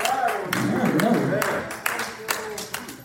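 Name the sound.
audience hand clapping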